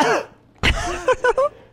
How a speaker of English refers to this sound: You're going to cough, leave the room. I agree, though. It's rude as shit.